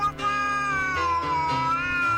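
A cat lets out a long, drawn-out meow that rises and dips in pitch, fairly loud, lasting a couple of seconds with no one talking.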